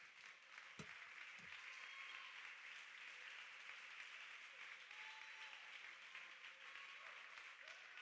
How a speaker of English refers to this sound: Let's clap our hands to the Lord right now.